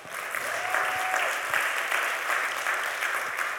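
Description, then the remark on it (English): A church audience claps steadily throughout, a dense, even wash of many hands with no single claps standing out, holding at a moderate level for a few seconds without any talking. “Yeah, you can clap.”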